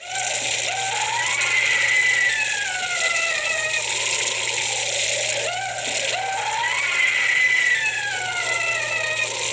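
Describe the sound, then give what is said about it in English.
A long, eerie scream from Disney's sound-effects album, played at Halloween. It rises and falls in wavering, high-pitched wails, sustained and loud throughout with no talking. “Do you remember the scream in that album that we used to play in Halloween?”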